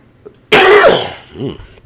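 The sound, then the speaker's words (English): A single loud, rough throat-clearing cough bursts out and fades over about half a second, followed by a brief, softer voiced grunt. “Frog in my throat.”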